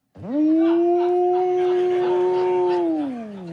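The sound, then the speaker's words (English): A voice imitates whale song with one long, loud moan held at a steady pitch for nearly three seconds before sliding downward and fading. “and everybody got down on the floor, okay, and they turned the lights down low, and they turned on the whale music.”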